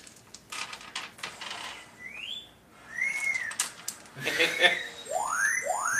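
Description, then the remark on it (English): An astromech droid chirps and whistles in quick electronic bursts, with short rising and falling sweeps and warbling beeps over a low background hum, moderately loud. “Wait, I know those chirps.”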